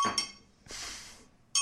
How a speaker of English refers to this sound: Ding. Where's my bell? Right here. Oh. Behind the coffee cup.